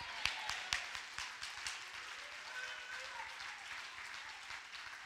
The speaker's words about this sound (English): If you believe that, clap your hands and shout amen.